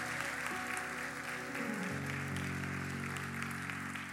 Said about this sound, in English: Come on, can we give them a good hand clap in here?